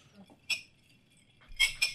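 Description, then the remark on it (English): Glasses clink together in a toast: one bright, ringing chink, a pause, then two more quick clinks close together, each with a short high-pitched ring over a quiet background. “And I think on that note, I'd like to go ahead and raise my glass to you boys.”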